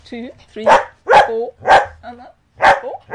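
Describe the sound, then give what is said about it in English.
A dog named Jasmine barks four times in quick, sharp, loud bursts, with high whining yelps in the gaps between barks. “And Jasmine was helping with the bark in the back. She's very vocal.”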